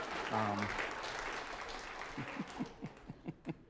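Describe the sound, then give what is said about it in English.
A crowd applauds in a dense wash of clapping, with a brief cheer early on. The sound then thins out into a handful of evenly spaced single claps. “Applause would normally happen right now.”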